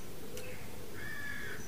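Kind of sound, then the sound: bird, birds calling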